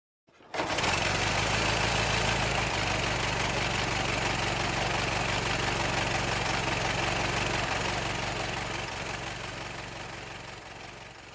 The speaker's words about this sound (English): For example, in my latest episode on Mary Fagan, I wanted to have the sound of a car pulling up, but because it was set in 1913, I didn't want it to sound like a modern car, so I looked for a Model T Ford sound, and this is what I ended up with.